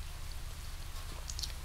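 Soft, steady rain falling, with scattered light patters and drips over a constant low rumble, all fairly quiet and without any voices.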